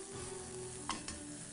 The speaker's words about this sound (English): see if your pan is hot enough, just throw in one or two pieces. And as you can see, it's starting to sizzle. Beautiful. We're going to throw it in. In with our shallots. In with our nice garlic here. I'm just going to start sweating this off.